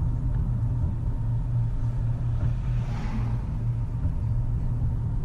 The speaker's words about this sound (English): Almost hit by a dump truck.